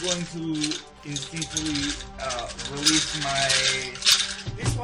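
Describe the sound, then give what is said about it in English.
Dry, rattling clatter like sticks or bones knocking together, a loose run of sharp clicks under a person talking over it throughout. “Kind of like a maraca, like more like sticks kind of clanking together and clattering.”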